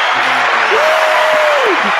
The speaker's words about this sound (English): I was trying to find my applause. There we go.